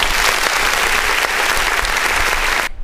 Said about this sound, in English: All right. Well, applause for that.